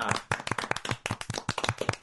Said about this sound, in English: They should be louder. Make them, like, ear-piercingly loud so that anybody that falls asleep with the podcast on just dies. Just bass boost. Let's do an applause bit.